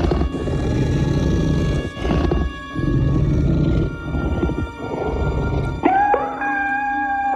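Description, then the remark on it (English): A deep, growling creature roar sound effect rumbles in several long bursts, then abruptly gives way to a high, rising meow like a small cat, loud with no talking. “Creature sounds. We're pretty good, and then it got all kind of cute at the end.”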